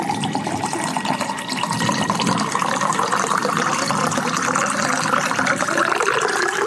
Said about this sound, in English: I reached for the bottle of tequila and poured myself a healthy glass.